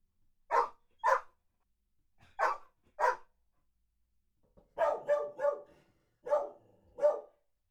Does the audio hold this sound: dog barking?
yes